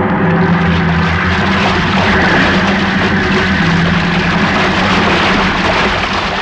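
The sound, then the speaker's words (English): A huge ocean wave crashes over a ship's port bow, a loud, sustained roaring rush of water that holds steady for several seconds with no voices. “Wait, look at the size of that wave. Huh? But great Jehoshaphat, we're going to take it on the port bow. Hang on!”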